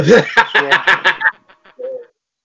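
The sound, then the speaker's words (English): A person imitates a bird call with a quick rhythmic run of squawking, cluck-like bursts, fairly loud, trailing off into a few faint clicks and one short tonal note. “here's a bird for you.”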